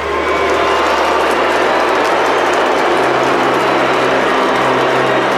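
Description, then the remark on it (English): A large American crowd boos loudly and without letup as Serena Williams takes the court for her match, a dense, steady roar of voices that holds at the same level for several seconds with no clear individual speech. “An American crowd booing an American family, and you have to say that it does smack of a little bit of racism.”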